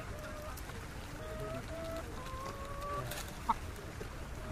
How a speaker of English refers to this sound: I remember passing a little rest stop with a peepal tree and a water spigot where a bunch of porters were taking a breather. Their cargo consisted of chickens in stacked cages, and the chickens were making the most unearthly, unchicken-like